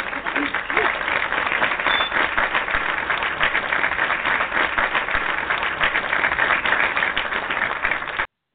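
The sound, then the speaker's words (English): A steady, dense round of applause on the Airgasm Show fills the whole stretch at an even, fairly loud level, many hands clapping together without pause before it cuts off abruptly. “Let's give a warm round of applause to Miss Beverly Blue.”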